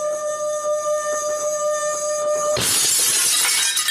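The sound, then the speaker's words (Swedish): A steady, ringing glass tone hums for a couple of seconds as one drinking glass is rubbed while set next to another glass, then cuts abruptly into a loud, harsh burst of bright noise. No voices. “Sätter jag glasen nära varandra och sen gnider jag på det andra glaset.”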